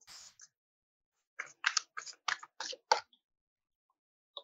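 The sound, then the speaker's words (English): Shuffling of a deck of tarot cards, a brief flutter followed by a rapid run of six or seven crisp, papery riffling bursts, then quiet. No one speaks. “So let me just, I like to kind of quiet my mind while I shuffle.”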